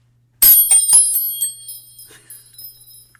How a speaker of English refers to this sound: On that note, where's our wind chimes to segue?